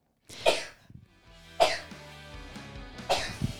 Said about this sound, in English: I finally sneezed. I've been needing to sneeze this whole show.